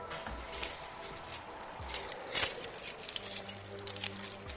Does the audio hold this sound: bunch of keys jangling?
yes